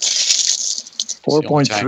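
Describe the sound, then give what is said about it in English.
A bright, busy clatter of physical dice being rolled during a game, rattling and tumbling for about a second, with a few sharp clicks at the end, before a voice starts talking over the quiet. “Meanwhile, I'll get my physical dice out because I'm tired of not being able to roll.”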